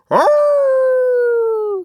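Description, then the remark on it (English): A single loud wolf howl: a rough, breathy start that settles into a long steady tone, then sinks slightly in pitch before cutting off, with no other sounds around it. “You deal with Big Bad Wolf. He's out of control again, just like in all the other stories.”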